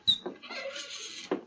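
An unlocked house door opens: a sharp latch click, then a drawn-out creaking swing lasting about a second, ending in a soft knock as it comes to rest. No voices.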